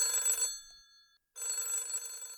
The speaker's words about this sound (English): As I started to settle down, the phone rang.